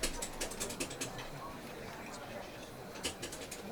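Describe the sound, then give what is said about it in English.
A chair being taken apart: two bursts of rapid, sharp ratcheting clicks, the first about a second long, then a quieter stretch, then a second shorter flurry of clicks. “Chris is taking his chair apart over here.”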